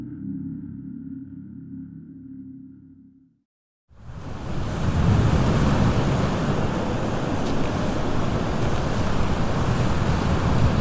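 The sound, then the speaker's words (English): A low droning hum cuts out into a moment of silence, then a loud, steady roar of deep ocean waves crashing against a rocky shore by a bay fills the rest, continuous, recorded on a body camera. “The video shows him walking toward the rocky shore under deep waves, with nothing but a wall of white visible across the bay.”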